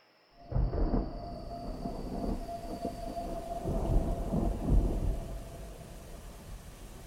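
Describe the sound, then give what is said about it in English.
A thunderstorm on a rainy night in New Orleans rumbles with deep, rolling thunder over steady rain, the low roar building and swelling for several seconds with no voices present. “Under the cover of a rainy night,”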